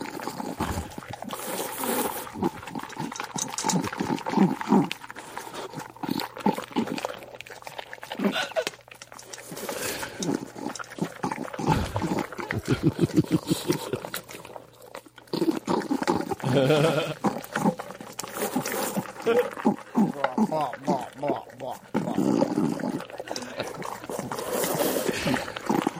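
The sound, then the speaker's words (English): A female dog eagerly chewing big kibbles from her bowl, recorded on a phone next to the bowl, with loud, rapid, continuous crunching mixed with snorty, bleat-like grunts and heavy breaths throughout. “Every time she gets three big kibbles, this is the sound she's making.”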